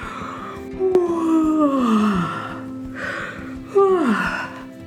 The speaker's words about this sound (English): Now that your 5 to 10 minutes is up, take a series of deep, mindful yawns again.